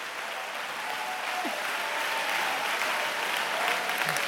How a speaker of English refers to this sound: I want you to stand to your feet and I want you to clap your hands and I want you to begin to magnify God with all of your heart.